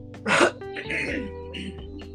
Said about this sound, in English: So, Lord, I got a cough.